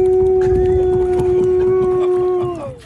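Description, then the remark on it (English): An Alaskan Malamute lets out one long, steady, foghorn-like howl, holding a single low-to-mid pitch for over two seconds before it slides downward and fades, over a low rumbling background. “This Alaskan Malamute is a real-life foghorn.”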